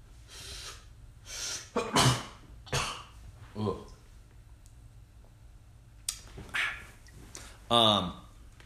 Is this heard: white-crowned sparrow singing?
no